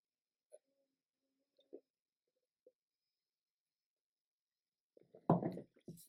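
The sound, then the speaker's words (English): A few faint, scattered clicks and slurps, a pause, then a loud swallow-like gulp followed by a short breathy exhale from someone taking a sip of a drink. No one speaks. “That was just a sip-ski, I guess.”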